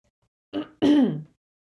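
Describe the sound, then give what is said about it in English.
A little cough: a short, soft first push followed by a fuller, throaty, voiced second burst, as a young woman clears her throat before reading aloud from a book. “As she gave a little cough, she began to read.”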